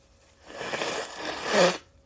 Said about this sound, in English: But hold on 1 second. Let me blow my nose.